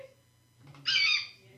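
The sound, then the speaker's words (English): A person imitates an eagle's cry with one loud, shrill screech lasting about half a second, after a brief stretch of quiet low background hum. “chickens? No. Eagle. We don't have any eagles.”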